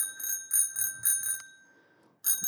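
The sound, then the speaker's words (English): A little bicycle bell on a tandem bike rings in a quick series of about four bright, metallic dings, lets the tone fade, then dings once more. It is clear, with no talking. “A little bell. I don't know what that's for or what that does.”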